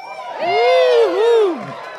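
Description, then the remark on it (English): A crowd yells and cheers together in a loud, sustained burst that rises, dips briefly, then swells again before trailing off after about a second and a half. “So thank you for yelling”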